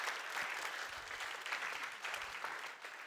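A crowd claps steadily in a dense, continuous wash of applause, many hands overlapping into a bright, even roar that holds at a fairly loud level throughout.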